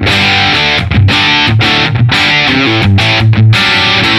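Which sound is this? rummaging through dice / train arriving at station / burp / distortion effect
distortion effect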